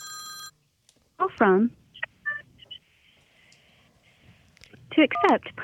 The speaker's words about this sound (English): Oh, shit. Are we getting a call? We are. Hold on a second.